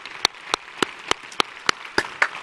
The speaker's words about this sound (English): Church family, would you stand together, and let's give him a round of applause for his help with us this evening. Thank you.